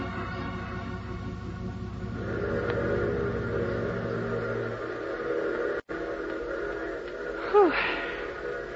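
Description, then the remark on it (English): A train rumbles steadily as it draws in through fog, its low mechanical drone building, then a short whistle blast sounds near the end. No one speaks. “Well, at least the train seems to be on time.”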